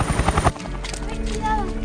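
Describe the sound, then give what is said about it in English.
A helicopter, Chopper 3, comes in for an extraction, its rotor chopping in rapid rhythmic thumps before settling into a steady, loud engine drone, with muffled voices faintly beneath. “Pinball, this is Chopper 3.”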